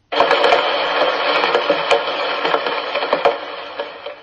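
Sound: rain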